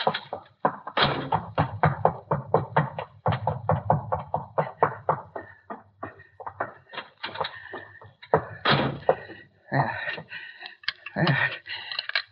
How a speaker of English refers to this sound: Safe in my room. Now, wait, I must lock the door. Locked and bolted.